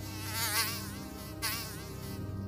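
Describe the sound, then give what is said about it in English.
A fly buzzes continuously, its drone wavering in pitch and loudness as it circles, with a brief swell near the middle. No voices are heard. “The last thing I heard before I lost consciousness was the buzzing of the fly.”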